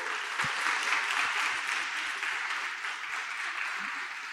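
An audience claps steadily for a guest who gives dating and marriage advice, a dense, crackling wash of many hands that holds at an even loudness for several seconds with a faint rhythmic thump underneath and no talking.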